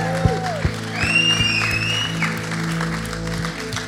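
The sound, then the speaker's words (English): An audience claps in a steady, evenly spaced rhythm to welcome guests and for Jesus, while shrill whistles sweep upward over a constant low hum. No one speaks. “And while you're clapping, why don't you put your hands together for Jesus, because he is awesome.”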